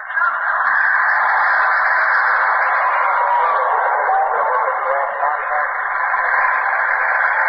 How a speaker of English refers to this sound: The signal is not of broadcast quality. That sound of voices may be what the technicians call ghost voices. Weird patterns of static which sound like people talking. But on the other hand, it may be John Daly trying to get through